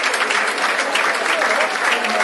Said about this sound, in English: Fred coming in. O'Brien going out. Mr. Harris. Good applause for Fred.